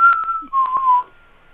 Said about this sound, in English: The Black Cap Chickadee song is a simple two-note whistled Phoebe, but sometimes it's Hy-Vee.